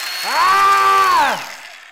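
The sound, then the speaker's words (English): A power tool with no blade whirs up to speed, holds a steady high motor whine for about a second, then winds back down, loud with no talking. “Okay, our fifth and final point, and the power tool to accompany.”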